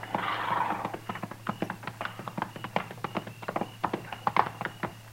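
Steady clip-clopping of several horses' hooves as riders approach a hunters' camp when it is almost dark, a brisk run of sharp taps that grows slightly louder, with a faint low hum underneath and no voices.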